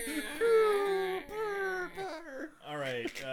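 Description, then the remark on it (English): A voice makes a 'booby deflating' noise: a whiny, wavering, drawn-out tone that sags and wobbles in pitch over a few breathy stretches, fairly loud, with no words. “He's making the booby deflating noise.”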